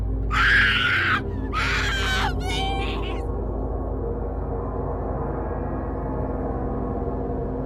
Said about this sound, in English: The sound of a woman in excruciating pain, then sudden silence.